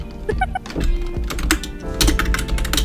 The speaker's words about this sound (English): He's really typing over there. I know, he's typing a lot.